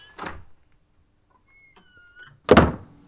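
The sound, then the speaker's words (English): A cabin's front door is handled: a brief rattle, then a thin creaking squeal as it swings open, ending in a loud wooden thud. No one speaks. “At the front door, John Carmichael, a native New Englander, not counting Connecticut, enters the cabin.”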